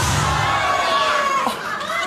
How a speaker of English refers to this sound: Jill, people are cheering.